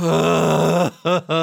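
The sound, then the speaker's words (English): A voice imitates the muffled, smothered gasping of someone with a chloroform rag over her mouth and nose: one long strained groaning breath, then two short choked bursts, fairly loud with no other talk. “And then there's a rag over her mouth and nose, and a gal starts gasping.”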